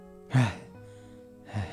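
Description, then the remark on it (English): Two sharp, breathy gasps for air as someone comes out of a meditation, one near the start and another about a second later, loud, with quieter breathing between them and no talking. “And …, like, comes out of the meditation just, like, gasping for air.”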